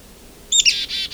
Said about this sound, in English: You can hear a second one. Oh, it's a red-breasted nuthatch here too. It's coming a nuthatch right in front of me, red-breast.